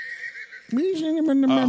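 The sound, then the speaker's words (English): A horse neighing sound effect played from a soundboard whinnies loudly in one drawn-out call, starting with a high, thin squeal that drops into a shaky, wavering neigh. “A horse, really?”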